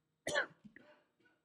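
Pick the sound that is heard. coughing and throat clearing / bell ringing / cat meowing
coughing and throat clearing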